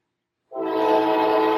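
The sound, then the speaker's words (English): A loud, sustained train horn sounds after a brief silence as a train goes by, holding one steady, brassy chord to the end without fading. “It's the train of progress.”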